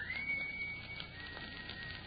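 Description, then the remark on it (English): A single short, high whistle in a house, seeming to come from the cellar, that slides up briefly and then holds a steady pitch for under a second before stopping, heard over a low, constant background hiss and hum with no talking. “Gee whiz, what is there in the cellar that would whistle?”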